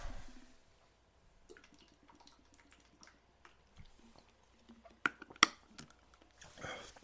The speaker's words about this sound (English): Let me get a drink of water real quick. My throat is already dry.